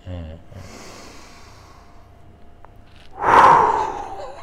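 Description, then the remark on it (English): A brief voice at the start, then one long, deep sniff drawn in steadily for a few seconds, ending in a louder, breathy huff of air. “Having said that, in that heat, how long am I sniffing for? Just like one big...”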